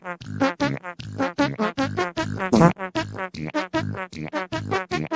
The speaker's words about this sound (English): It's time for the fart song.